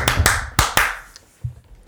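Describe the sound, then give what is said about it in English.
Four sharp, loud hand claps ring out in an uneven rhythm, two quick ones and then two more spaced apart, followed by a few faint taps and soft thuds. “I clapped like 18 times.”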